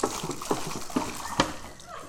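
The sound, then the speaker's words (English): Water is poured out and spills onto a hard floor in a few quick, uneven splashes over a steady wash of noise, moderately quiet. “They will forgive me for making the floor wet.”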